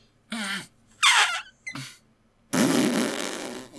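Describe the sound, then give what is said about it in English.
A series of loud raspberry fart noises blown with the mouth into a microphone: three short sputtering bursts, followed by a longer, broader buzzing blow. “We are literally making fart noises into microphones.”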